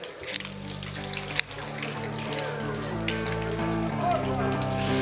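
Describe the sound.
Soda cans, including a Coca-Cola, pop open together for a toast with sharp, hissing cracks, one burst early on and another about a second later, followed by soft fizzing, all over steady background music and faint voices.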